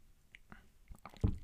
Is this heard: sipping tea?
yes